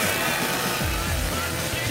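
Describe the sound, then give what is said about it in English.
A chainsaw engine sputters and revs in short bursts, its buzzing roar rising and falling in pitch over a loud, harsh wash of noise. “I love that chainsaw sound coming in the end.”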